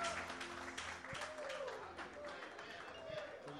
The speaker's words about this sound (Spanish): oh, give the Lord a hand. Dale un fuerte aplauso al Señor.